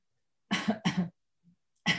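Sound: coughing fit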